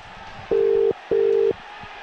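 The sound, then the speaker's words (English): A telephone ringback tone of an outgoing call, redialed to the last dialed number, purrs twice in the classic double-ring pattern, two short steady beeps close together, clear over a faint background hiss with no one talking. “If you want to be Fauna fan, you've got to answer your phone.”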